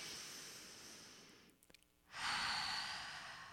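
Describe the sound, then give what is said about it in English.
A long, airy breath drawn in, a short pause with a few faint clicks, then a fuller, louder exhale, with no talking. “But let's just take a deep breath. Let it out. Another one.”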